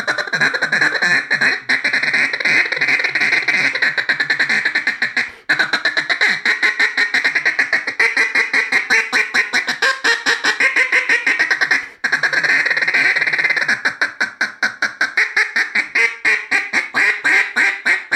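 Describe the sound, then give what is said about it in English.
Duck calls blown in a dense, nonstop stream of layered quacks, feed chuckles, lonesome hen calls and greeter calls that imitate an entire flock of ducks on the water, loud, with no talking. “And you mix that with some lonesome hens and some quacks within that. And then you start mixing that with some of your greeter calls, so it sounds like an entire flock of ducks on the water is working those ducks in the air.”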